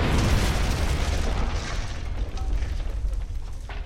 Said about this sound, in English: As you do that, there's another explosion and something strikes the wall. something that rockets straight across, cuts a channel through the fog.